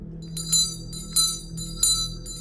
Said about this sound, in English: Was that you ringing the bell? Is there something that you want?